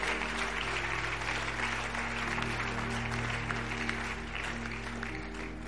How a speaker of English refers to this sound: Increase that clap offering for me.